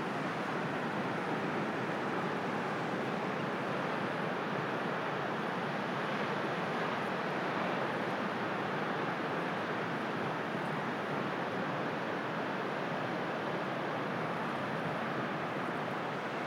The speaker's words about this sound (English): So I'm going to leave you with the song of the sea.